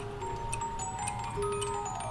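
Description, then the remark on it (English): An English bracket clock from the late 1800s ticks steadily about twice a second, its dry clicks mixed with sustained, music-box-like tones and chimes playing continuously underneath, with no one speaking. “This is an English bracket okay, clock. The carriage clocks are... This is late 1800s.”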